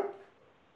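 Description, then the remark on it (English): A dog outside gives one sharp, mid-pitched bark that starts loud and quickly fades into a low, murky background, with no voices present. “It's like it sounds like they're setting off other dogs, and that's why I was wondering.”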